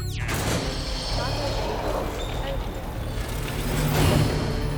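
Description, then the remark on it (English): Heavy ceiling cargo bay doors grind and strain open with a steady low rumbling hum, clanking and scraping noises, and a sharp metallic jolt at the start, swelling louder near the end as something on the outside jams them. “Computer's saying it's something on the outside, jamming the doors.”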